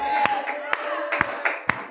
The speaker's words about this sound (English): Come on, put your Bibles down and clap your hands for Jesus. Come on, go ahead and clap your hands for Jesus.